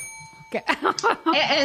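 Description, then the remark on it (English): A bright, sustained bell tone, rung by the host, rings steadily, its shimmering overtones lingering throughout as a voice begins talking over it about halfway through. “Might I interrupt you for a moment? Let me do the bell.”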